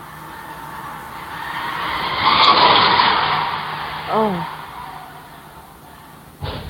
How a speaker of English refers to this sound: Did you hear it? I sure did. Did you hear the crash? Yes.